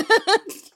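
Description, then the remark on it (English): A sneeze: two quick voiced catches of breath building up, then a short, breathy burst that fades out, with no talking around it. “Bless you.”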